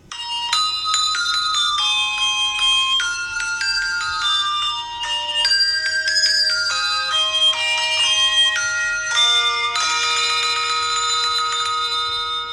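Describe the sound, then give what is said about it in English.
Bright, bell-like chimes ring out a steady melody, one clear tone after another with long shimmering overtones, fairly loud, with no voices, from an American Christmas television commercial for Hershey's Kisses. “we put together a review of the holiday Christmas commercial most known and loved titled Christmas Bells”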